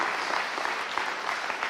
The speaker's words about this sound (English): You might as well clap right there.